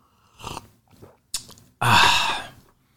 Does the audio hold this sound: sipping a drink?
yes